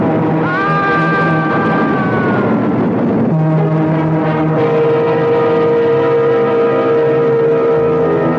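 A train horn blares loudly and without a break over a heavy rushing roar as a southbound express train speeds past at the Mount Kisco station. The horn's pitch drops partway through and then holds steady.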